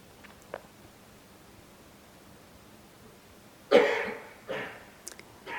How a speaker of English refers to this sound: Coughing arises, and it's known, and you don't go anywhere.